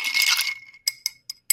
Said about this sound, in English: Using a chopstick to mix it up because I had nothing else to mix it with.